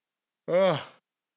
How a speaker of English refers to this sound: Yawning again. This is ridiculous.